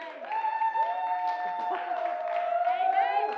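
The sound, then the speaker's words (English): A church audience claps and cheers for a few seconds, steady applause blended with sustained, sung-out voices and shouts that hold a bright, ringing pitch throughout. “the Parliament of Church going to clap and pass it.”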